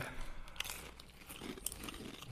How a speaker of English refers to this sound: Chew right into the mic. Full ASMR for you people. That crunch. I'm going two bites.